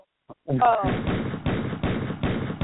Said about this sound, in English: Where's the gunshot now? Pow, pow. Pew, pew.